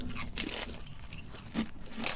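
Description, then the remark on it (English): Crunching new ginger beer flavour Kettle's potato chips: several crisp, crackly bites and chewing bursts, fairly quiet, with irregular spacing and no talking. “Let's go for the munch and crunch test and see whether or not they've managed to capture ginger beer flavour in the new Kettle's potato chips.”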